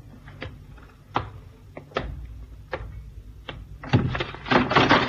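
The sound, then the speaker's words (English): A series of hollow wooden thunks as someone goes down through a trap door on a ship's bridge and it is lowered and shut, spaced about a second apart, ending in a louder rattling clatter. No one speaks. “As we came onto the bridge, somebody did a disappearing act down the trap door.”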